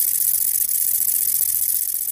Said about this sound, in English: The short-winged conehead has a very soft song indeed, and it almost sounds exactly like the wind blowing through the reeds.